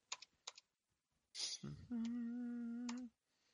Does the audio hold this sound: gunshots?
no